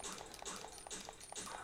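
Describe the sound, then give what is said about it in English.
A video game dog whimpers and yelps as it dies, in a quick series of short, high, strained cries, fairly loud, with no one talking over it. “And apparently you're still fine after murdering several puppy dogs.”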